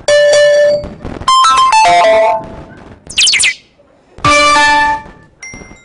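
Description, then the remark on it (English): A rapid sequence of loud electronic phone alert tones: a sustained beep, a quick descending run of chimes, a high chirp, then another long tone and a short final blip. “Oh, notification, let me look at my phone.”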